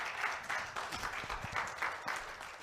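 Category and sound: crowd, audience clapping hands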